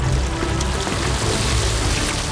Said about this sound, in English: With that, Ganymede strode to the edge of Mount Olympus and poured his jug of ambrosia from the heavens.